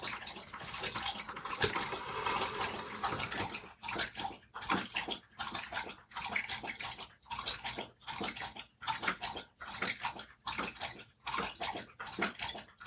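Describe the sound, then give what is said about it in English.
A dog drinks water by lapping, starting with a rush of wet splashing and then settling into a steady, rhythmic series of slurping laps, about two per second, with no one talking. “You hear my dog in the background?”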